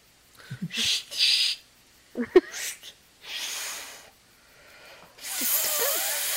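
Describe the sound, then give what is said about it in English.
Several breathy, airy hisses come in uneven bursts as someone attempts to whistle but produces only rushing air, with faint voiced grunts and breaths between them and a longer final hiss. “I really don't know how to do the whistle thing.”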